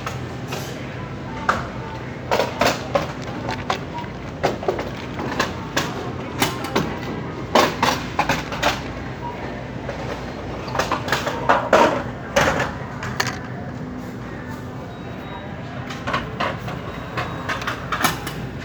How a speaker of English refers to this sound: So basically, she just put three cashier's chairs because she's the manager of the front area of the cashiers, and she shoved the carts.